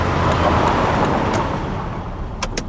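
A big truck roars past on the road, its heavy low rumble loud at first and then gradually fading, with a couple of brief high clicks near the end.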